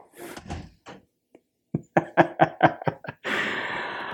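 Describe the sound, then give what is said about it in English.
A child pulls a door shut, with a few soft bumps followed by a quick run of sharp clattering knocks from the latch and frame, then a steady rush of noise. “Can you shut the door behind you?”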